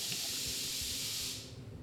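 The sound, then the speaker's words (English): A steady, bright hiss of escaping air from an air compressor runs for over a second, then abruptly cuts off, leaving a faint low rumble underneath. No one speaks. “It's the air compressor.”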